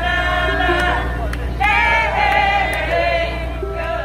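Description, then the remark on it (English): A crowd gathered in Richmond, Virginia, to watch crews remove a statue of Confederate General Robert E. Lee: many voices, with raised shouts and cheering calls rising over a steady, loud murmur of babble that continues throughout. “In Richmond, Virginia today, an historic moment as crowds gathered this morning to watch crews remove a statue of Confederate General Robert E. Lee.”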